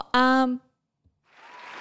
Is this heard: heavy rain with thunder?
no